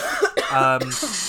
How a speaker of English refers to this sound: One day we'll do a podcast and I won't cough.